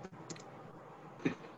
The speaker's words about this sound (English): Nope. Hold on. I'm typing.